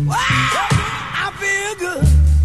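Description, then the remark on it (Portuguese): A loud, raw soul singer's scream that bends and swoops in pitch for about two seconds, then gives way to a punchy burst of low band music from a recording. “Quem é que não lembra desse grito aqui, ó?”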